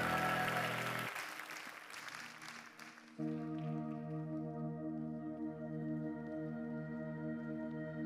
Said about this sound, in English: Could you give Jesus the biggest hand clap of the day?